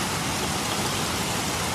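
Heavy rain pours down in a dense, steady roar, a constant wash of hissing and spattering on hard surfaces with no pauses and no voices.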